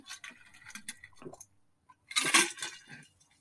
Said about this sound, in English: Take a swig of water. The throat's getting a little scratchy.